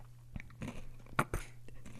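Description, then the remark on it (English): Crunchy chewing and biting right at the microphone, with several sharp crackling bursts over a steady low hum, loud, no talking. “Stop chewing in the microphone.”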